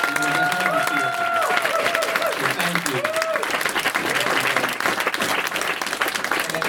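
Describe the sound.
A convention audience breaks into a loud, sustained round of applause, dense clapping filling the whole stretch while a man briefly speaks over it.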